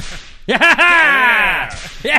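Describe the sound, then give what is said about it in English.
A loud whip crack sound effect: a sharp snap followed by a long, sweeping, falling whistle-like tone that trails off, with a brief burst of similar sound at the end. “Yeah, I think we have a whip sound.”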